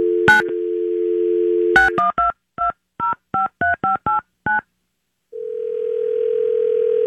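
A steady telephone dial tone hums, then a quick run of about ten touch-tone beeps as a number is dialed to place a call from a haunted house, followed after a pause by a single continuous tone, all clear with no talking.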